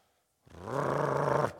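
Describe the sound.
A person imitates a small dog's growl, the little dog growling at a sliding glass door next to a dinner table: one steady, low, rumbling voiced sound held for about a second after a brief silence, fairly loud and alone.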